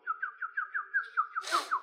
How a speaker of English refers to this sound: So if I ever get lost in a store, like when I was a kid, my grandfather would just do this. Oh, whistle like this. And I'll come find you. And it's like, okay. And every time I got lost, he'd go.